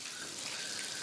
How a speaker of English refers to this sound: The water fills the bath. Don't forget to turn it off. We don't want too much water in the bath.